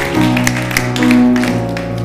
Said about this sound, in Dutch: Kom, laten we de God een applaus geven. Let's give Him a hand.